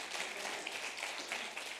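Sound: audience clapping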